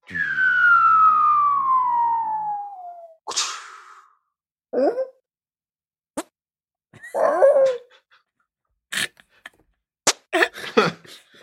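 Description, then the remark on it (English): A sci-fi siren effect glides downward in pitch for a few seconds, then a dog barks several times in short, irregular bursts with sharp clicks between them, with no one speaking. “But together, you've got dog concerned that aliens have landed, warning the owners that that aliens have arrived.”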